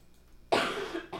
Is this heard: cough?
yes